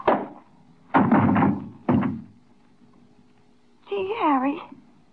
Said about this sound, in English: What'd you hit him with? Just a paperweight.